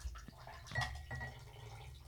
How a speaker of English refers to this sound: We'll just take a short intermission while we pour some water.